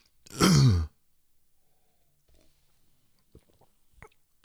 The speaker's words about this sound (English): It's freaking fantastic. If you could get your hands on this, it's a sipper. All right, it has I think it was a 9% ABU. But it is so freaking tasty, you will freaking fall in love with this. Let me just take another quick sip.